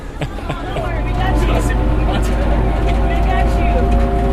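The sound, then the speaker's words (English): A Danfo minibus drives through Lagos, Nigeria, on a Sunday afternoon, with a steady, loud, low engine rumble that swells slightly after the first second, with rattles and faint voices chattering in the background. “The Danfo bus is on the move again.”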